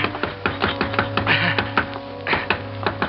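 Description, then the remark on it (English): A pocket knife blade cuts and scrapes into a wooden door in quick, steady strokes, whittling a hole through it, about a dozen sharp clicks over a few seconds, clear over a low, constant hum with no talking. “I had about 3 hours to whittle a hole through that door big enough for me to get my hand through.”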